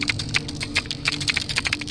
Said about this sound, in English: It's like something's clicking in the water. And it sounds like it's some sort of creature making this reverberating click.